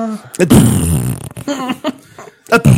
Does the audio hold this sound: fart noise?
yes